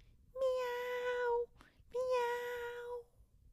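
A cat gives two drawn-out, steady meows with a short pause between them, each lasting about a second, fairly loud against a quiet background.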